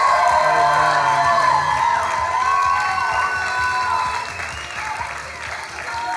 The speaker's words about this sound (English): Why don't we give Jesus a round of applause? How about that? Yeah. How about we give him one more round of applause? Yeah?